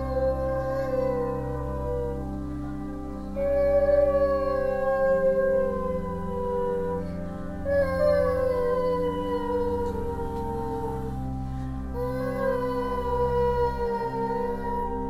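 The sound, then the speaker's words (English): A dog and a person howl together, long wavering overlapping tones rising and falling in pitch for about fifteen seconds, the human voice imitating the howl, with no talking. “listened to us howling together.”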